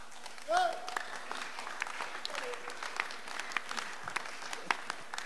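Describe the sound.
An audience at a church service claps hands in a dense, steady patter of many overlapping claps, with a few louder sharp hits standing out and a voice briefly calling out over the applause.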